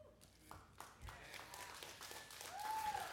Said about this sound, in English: Okay, that was a very weak applause, so I'm going to try that again.